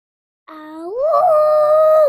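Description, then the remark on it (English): A child's voice imitates a dragon howl, one long, loud cry that starts low after a brief silence, slides upward, then holds steady and strong until it cuts off. “Okay, I want to hear your best dragon howl.”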